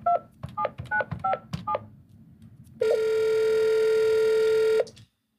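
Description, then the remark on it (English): A quick run of about six touch-tone dialing beeps, then a single loud, buzzy telephone ring tone that holds for roughly two seconds before cutting off. No voices. “Yeah, so we should be giving him a phone call.”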